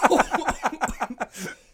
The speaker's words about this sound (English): There must be asbestos down here. Every time I come down here, I got a cough lately.